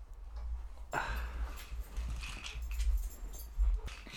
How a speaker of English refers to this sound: Our dogs were being real loud.